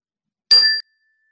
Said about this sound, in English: And we'll begin with the ring of the chime, and we'll end with the ring of the chime.